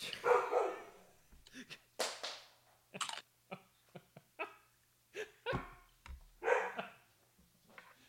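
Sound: dog barking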